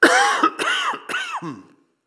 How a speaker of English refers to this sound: And I'm going to cough first. I'll turn away this way first, though.